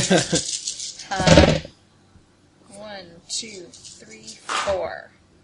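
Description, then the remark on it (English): A handful of dice clatters and rattles in two quick bursts, the second louder, followed by people talking quietly; the dice are rolled for a logic plus negotiation check. “She is, however, going to roll her logic plus negotiation, because that is how she works.”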